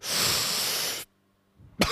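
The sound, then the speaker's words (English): A voice imitates a harsh, sputtering cough after inhaling smoke for the first time: one long, loud, breathy burst lasting about a second, a brief silence, then another forceful cough starting up. “And I coughed for like 15 minutes.”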